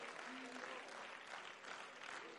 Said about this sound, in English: Let's clap our hands and give him praise this morning.